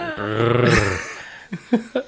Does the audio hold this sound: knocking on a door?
no